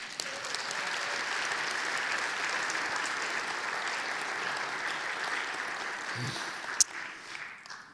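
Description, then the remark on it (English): A church audience claps steadily for several seconds after a motion carries in a vote on a slate of nominees, in a dense, even wash of applause, with a sharp single clap standing out near the end as the clapping begins to thin. “I think it's appropriate to applaud.”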